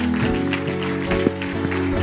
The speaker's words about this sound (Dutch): So let's give her geef a een groot applaus. Kom op. Give her a great hand. Come on.